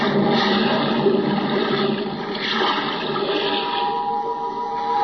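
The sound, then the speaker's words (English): Steady rushing, bubbling water churns continuously and loudly for the whole stretch as a diver holding equipment plunges overboard into the sea and sinks amid a dense stream of bubbles, with no voices present. “Now, hoist you up and overboard and dive with your equipment well in hand into the sea and under it.”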